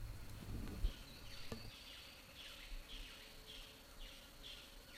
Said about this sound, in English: And yeah, I think maybe in between the two, we recorded some like jungle sounds. Maybe we'll play a little bit of that, the bugs and birds tweeting.